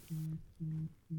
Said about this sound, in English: Whose phone is that? I swear. Whose phone is that? Oh, that's mine. It's muted. It's just vibrating. The whole table is vibrating.